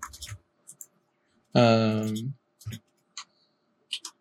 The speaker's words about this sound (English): Roll some dice for that.